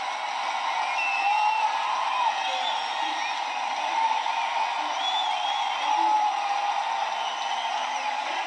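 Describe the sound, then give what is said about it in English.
A large basketball crowd cheers in a steady, loud roar as an Olmsted Falls game ends with a final score of 61-23, with scattered whoops and shouts rising above the sustained noise throughout. “That crowd, let them hear it.”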